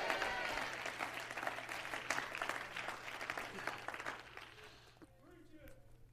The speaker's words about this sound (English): Would you clap your hands and shout yes?